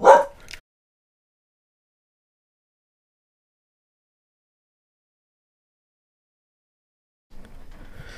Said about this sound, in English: Yeah, it's nice oak flat, and dogs are barking. Hold on.